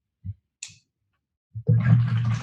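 Water sloshes as it is moved back and forth and redirected by hand on a table: a few short splashy bursts, then a steady, fuller rush of churning water that keeps going to the end. No one speaks.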